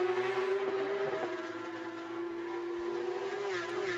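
Porsche race cars roar on track during race 1 of the 2022 Porsche Carrera Cup North America in Toronto, in a loud, steady engine drone that holds one pitch, dipping slightly near the end, with no voices present.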